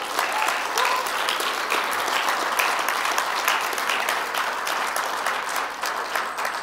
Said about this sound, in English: Can we give him some applause here for...